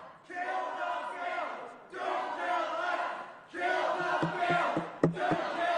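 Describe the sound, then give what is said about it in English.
A crowd of people in a Senate chamber shouts and chants together, yelling "Kill the bill," in loud, overlapping bursts, swelling and dipping in three waves, with sharp knocks or bangs breaking through near the end. “Sergeant Arms will restore order in the chamber.”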